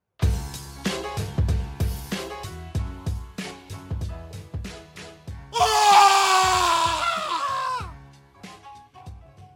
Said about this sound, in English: Cue the jingle.